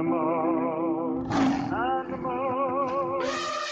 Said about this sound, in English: Animal, crazy animal. Boy, that elephant sounds really, really angry.